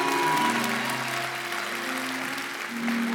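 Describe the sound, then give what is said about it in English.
A church audience claps steadily, dense and sustained applause for a few seconds, with some cheering tones faintly mixed in, applauding the church's giving away of money in one service. “Y'all can clap for that.”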